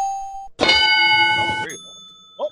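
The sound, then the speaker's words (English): A loud, ringing bell-like sound effect sustains for about a second with bright overlapping tones, preceded by a short steady tone and followed by fading chimes and a faint voice. “What other bell do you want?”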